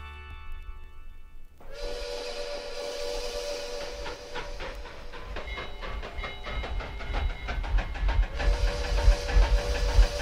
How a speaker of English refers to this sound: This train is a star train. So we're going to pull up to a train station now. We're all going to get off.